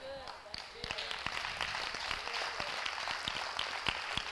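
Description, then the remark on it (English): An audience claps steadily for several seconds, a dense wash of many hands with sharper individual claps popping out, with some voices mixed in beneath the applause. “Now, we're going to get out of all of these Grammy Award claps in here.”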